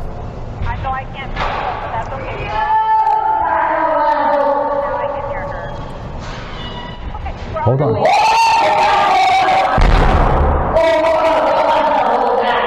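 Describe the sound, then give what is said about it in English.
A woman screams and yells loudly down an apartment hallway outside her apartment building, in long, strained, high-pitched wails that rise and fall, with brief muffled voices and background chatter between her cries. Recorded on video by a neighbor in the building. “Right now, the woman is outside of her apartment building, screaming down the hall.”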